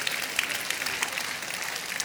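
A church audience claps together on resurrection day morning in steady, dense applause, many hands overlapping into a bright, continuous patter with a few sharper claps standing out. No one speaks over it.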